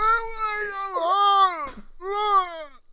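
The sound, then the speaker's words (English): A person imitates men screaming at about 11:30 p.m. on a Saturday, with two long, loud, high-pitched wailing yells. The first wavers and dips midway, then a brief gasp leads into a second shorter yell. “And also, the number of men screaming at like 11:30 p.m. on a Saturday, just screaming, just like.”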